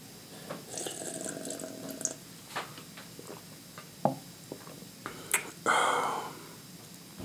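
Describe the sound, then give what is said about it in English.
Quiet slurping sips of tea with small wet clicks and gulps, ending in one longer, louder airy slurp; no one speaks. “Let me sip my tea real quick.”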